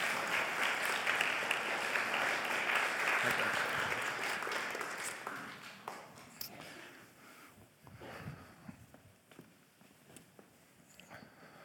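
Applause from a crowd, dense and loud at first, then gradually thinning out into scattered, fading claps over about ten seconds.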